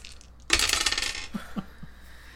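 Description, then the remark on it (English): Dice rolled by hand clatter across a hard table in a quick rattling burst, then a few separate clicks as they bounce and come to rest. Fairly loud, with no voices. “So, I'm going to roll for myself first. And grab this other dice.”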